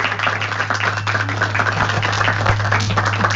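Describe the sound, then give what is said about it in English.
A crowd applauding steadily at the Audubon Society of Rhode Island, a dense patter of many hands clapping at once with no pauses, over a low constant hum in the background. “Someone's trying to applaud over there. Maybe we could you make that contagious?”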